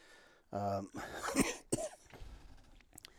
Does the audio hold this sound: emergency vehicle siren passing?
no